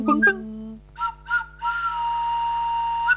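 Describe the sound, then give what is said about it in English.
A shrill whistle is blown in a few short bursts, then held as one long, steady blast, with a brief low voiced sound at the very start. “I've brought my whistle.”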